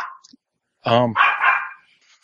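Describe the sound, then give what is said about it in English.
A dog barks: one loud, harmonic bark followed by a rougher, breathier burst, then quiet. Faint noise comes before and after. “let the dog get through his fit and relieve Anthony of further embarrassment”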